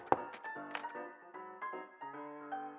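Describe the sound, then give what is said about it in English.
A woman sets down a tray and knocks a few sharp knocks on a door, spaced unevenly, heard over a steady bed of soft tonal music. The knocks are clear but not loud. “placed a smile on her face before placing the tray down and knocking.”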